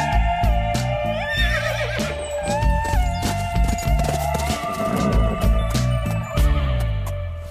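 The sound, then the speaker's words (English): A horse whinnies in quavering, high-pitched bursts over loud, rhythmic music with a steady pulsing beat and sustained tones throughout, in a Record cider advertisement where a woman at a picnic calls for the horse. No one speaks. “The woman calls for a horse, which saves the day by bringing the couple some bottles of cider.”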